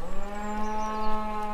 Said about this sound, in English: Okay, now what we're going to do by the magic of technology, we're going to play you a cow mooing in a minute, and then we'll be back.